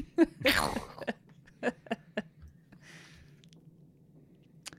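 Loud crunching of a woman chewing a date, with a big wet bite up front followed by several sharp crunches and softer chewing, heard alone without talking.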